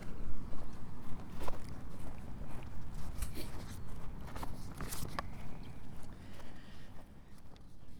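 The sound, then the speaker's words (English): Footsteps swish through grass at a steady walking pace as someone wanders along grassy slopes past the Efford Beacon trig point, each soft step brushing past over a constant low rumble of wind; no one speaks. “Wandering along the grassy slopes, and I'm passing Efford Beacon True Point, number S5629.”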